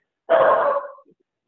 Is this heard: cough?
no